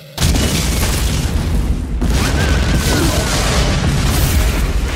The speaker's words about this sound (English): This explosion's blowing me through the air!